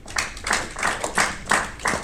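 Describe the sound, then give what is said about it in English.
Steady, evenly paced hand clapping, about six sharp, crisp claps in quick succession at a moderate volume, with no voices over them. “Ooh, listen to that clap.”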